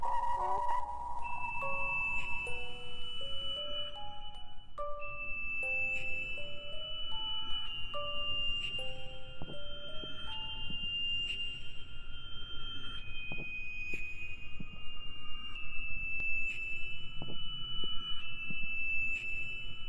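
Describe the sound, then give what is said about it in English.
Sonar pings: clear electronic tones repeating over about twenty seconds, some stepping up and down in pitch, with faint echoes trailing after them over a constant rushing background hiss. “A typical sonar man's analysis of the echo would be...”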